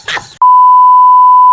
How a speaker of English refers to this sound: Hey, dude, can it just be a beep? I just beep it.